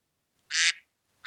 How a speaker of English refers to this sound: What's the duck? It's your chance to steal, Team Dressage.